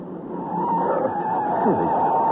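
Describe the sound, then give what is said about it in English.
Car tires skid with a sustained, grinding screech that holds steady for the full couple of seconds, rough and loud without letting up, as the car's brakes and handbrake fail to hold. “Good Lord, the handbrake won't hold either.”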